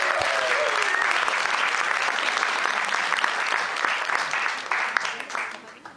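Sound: audience applause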